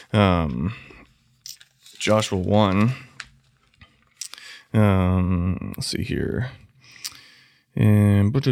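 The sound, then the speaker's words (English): A paper Bible is grabbed and its pages turned to Joshua chapter 1 in a few soft, crinkly rustles and small clicks during pauses in a person's intermittent talking. “But Joshua 1, verse 9, I'm just going to grab it real quick. Grab my paper Bible, because I love my paper Bible.”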